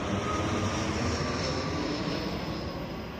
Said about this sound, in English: Gutierrez-Hedges recorded the jets flying over her daughter's school one day.